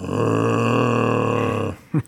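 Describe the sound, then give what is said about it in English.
A person imitates their own moaning while asleep: one long, steady, low droning groan lasting under two seconds, fairly loud, followed by a brief breathy grunt. “I like moan in my sleep.”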